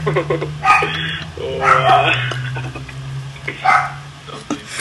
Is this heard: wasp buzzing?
no